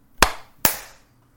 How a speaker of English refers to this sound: Well, we'll do the 3, 2, 1 clap countdown, and then I'll get us Okay. started. There we go. Okay. 3, 2, 1.